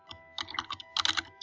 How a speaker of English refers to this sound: I hear you typing, but nothing.